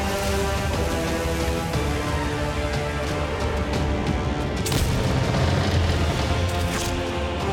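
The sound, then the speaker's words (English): A ship's cannon fires, launching a pirate over to another boat, with a heavy, booming blast partway through, set against a dense, loud wash of rumbling noise that continues throughout, with no voices. “He cannon fires himself over there.”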